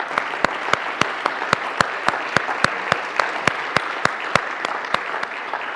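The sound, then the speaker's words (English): A crowd applauds steadily in honor of a man who has died, for his service, a dense wash of many hands clapping with a few sharp, louder claps standing out in a regular rhythm, holding at an even level throughout. “And as odd as this may seem, I think we should give him a round of applause for his service.”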